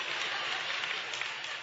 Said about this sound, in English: Thank you for 5 independent claps.